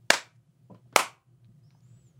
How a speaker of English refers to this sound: But if I clap, let me clap. Turn your head and let me clap real hard and see if it hurts.